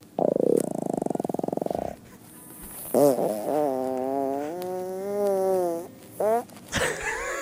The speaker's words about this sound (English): Here's one of … farts.